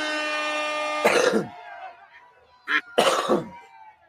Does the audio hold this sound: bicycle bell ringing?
no